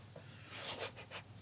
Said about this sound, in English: Actually, first, give me a D6. D6 roll. A D6? Yep.